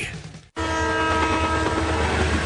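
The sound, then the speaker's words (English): A loud, steady train horn blares over the heavy rumble of a passing train, starting abruptly after a short burst of noise and a brief silence. “If you think trains will stop if they see a car on the tracks, you're right, they will.”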